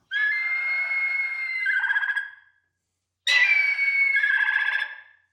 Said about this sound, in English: Anyone know what that is? Bald eagle. Exactly. That is a bald eagle kicking some ass. You do not mess with the bald eagle, okay?